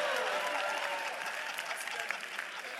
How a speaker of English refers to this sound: Clap for the drivers who brought you to church.